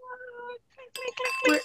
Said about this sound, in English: Clink, clink, clink. Clink, clink. I know, right? We got tiny clinks tonight.